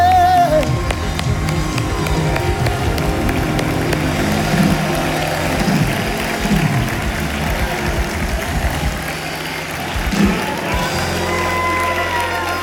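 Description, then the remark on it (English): An audience claps along in a steady, loud wash of hand claps, clapping their hands unto the Lord in praise, blended with crowd noise and music-like tones, continuing without pause for the whole stretch. “Let's clap our hands unto the Lord and give Him”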